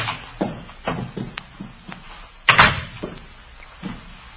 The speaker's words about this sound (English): No sound inside. Door's open.